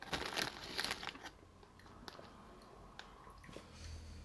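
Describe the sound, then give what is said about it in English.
Crinkly rustling of a Nando's peri-peri chicken flavour crisp packet being pulled open, a burst of sharp plastic crackles in the first second, then quieter intermittent rustles and small clicks, with no talking. “Right, I'm in the Nando's bag currently.”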